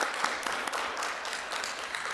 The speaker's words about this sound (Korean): 네, 한번 박수 해주시겠어요? 네.